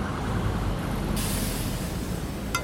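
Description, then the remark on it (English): Busy street traffic at Market and 5th rumbles steadily, then a loud hiss of air brakes cuts in and lingers, with a sharp click near the end. No voices. “I shrugged back at them and stepped out, finding myself in the middle of traffic at Market 5th.”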